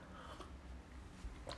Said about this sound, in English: I'm getting major dry mouth, so I'm just going to have a sip of my Thermo tea.